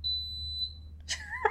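A single steady, high-pitched electronic beep from a box rings out clearly for under a second, then cuts off and is followed by a brief, harsh, voice-like burst.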